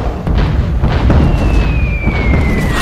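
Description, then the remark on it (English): Distant mortar and artillery explosions in a battle rumble in a continuous, heavy barrage of booms and crashes, while a shell's high whistle slides steadily downward in pitch over the din. “mortars and artillery whistle and crash.”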